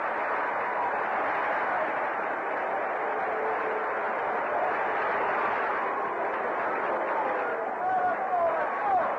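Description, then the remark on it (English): A baseball stadium crowd cheers a 6-4-3 double play, with Mazeroski throwing to first as Nelson pitches out of the inning against Chicago, game tied 1-1 in the fifth, in a steady, dense roar that holds for about nine seconds without letup, with a few brief whistle-like tones rising out of the noise near the end. “Listen to the crowd.”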